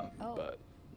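A brief electronic phone ringtone from an incoming call, a couple of quick melodic tones lasting under half a second, fairly quiet before it cuts off into low background noise.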